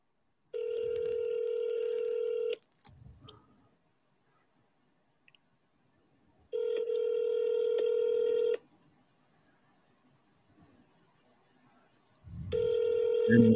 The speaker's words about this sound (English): Okay, we're going. We're calling. Okay, let's see if this works. He probably won't even answer. Can you hear that?